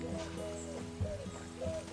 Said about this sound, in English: I see you sitting right on top of a telegraph pole. Hello. Nice little song you gave us. Actually, it's a dove, not a pigeon.